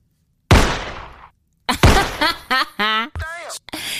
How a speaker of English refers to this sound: Did you do the one gunshot?